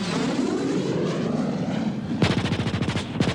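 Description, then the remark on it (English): A small radio-controlled model airplane engine whines steadily and loudly as the plane is launched and flown, then breaks into a rapid rattling buzz of sharp, evenly spaced pulses toward the end. No one speaks. “And then I launched my plane, my special plane. Sure enough, I flew it to where their planes were.”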